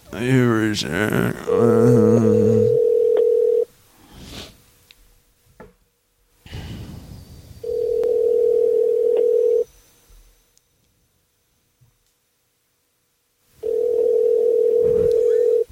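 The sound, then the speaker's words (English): Outgoing phone call ringing: a steady electronic ringback tone sounds three times in two-second bursts separated by longer silences, clear and fairly loud, with a short burst of voice at the start. “He always answers his phone hello, no matter what.”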